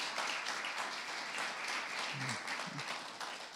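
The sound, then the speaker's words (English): A church crowd applauds the band steadily, the dense clapping holding at an even, fairly loud level for the whole stretch, with a couple of brief low vocal sounds briefly showing through midway. “I think we should show our appreciation to these guys by giving them a lot of clap.”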